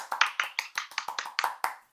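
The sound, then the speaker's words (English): A soft golf clap: about ten light, crisp hand claps in a quick, even rhythm over two seconds, fairly quiet, with no voices. “Golf clap to this show.”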